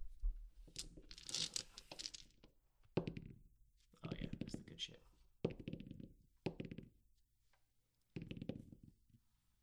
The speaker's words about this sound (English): Ooh, did you get that on mic? I got a 16. Here, let me just get some dice rolling ASMR down here.